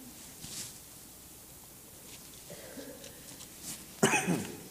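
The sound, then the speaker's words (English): During a church sermon, a quiet, hissy background with a faint throat sound early on, then one loud, harsh cough bursting out near the end and trailing off raspily. “Still got a little coughing.”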